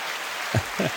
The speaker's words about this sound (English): Oh, a bit of rain. I don't know. The fake applause was way better.